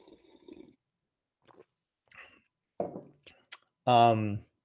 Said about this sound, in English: Just sip a coffee real quick here.